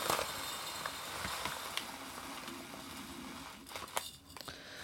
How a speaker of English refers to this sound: This is Frontier Co-op that I got it from. And it's in a foil bag that I'm just going to cut open. And then I have a 1-quart mason jar that I'm going to pour the root into. So here it goes.